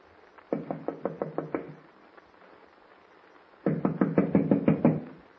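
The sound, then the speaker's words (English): Two loud bursts of rapid knocking on the wooden door of a log cabin, about seven raps each, separated by a few seconds of quiet. No voices. “Wonder whether the door's locked. No, it's open.”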